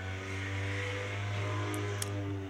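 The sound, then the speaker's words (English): A loud, steady low-pitched engine drone, like a truck with a rusted-out muffler rumbling, with a couple of faint high clicks near the end and no talking. “Honestly, I think that was probably a truck with a rusted out muffler.”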